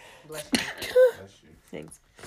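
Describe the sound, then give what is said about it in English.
A single sharp, breathy sneeze bursts out after a quick inhale, followed by a short voiced sound and some soft murmuring. “like, I'm about to sneeze.”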